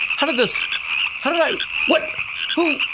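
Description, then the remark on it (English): A chorus of exactly 182 frogs croaking together, with four strong, throaty croaks rising and falling over a steady high-pitched trilling drone, loud with no talking. “Right now, he's standing in the doorway of the place, staring at exactly 182 frogs.”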